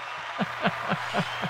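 A short applause sound effect: five evenly spaced claps in a steady rhythm over a low constant hum, with no voices.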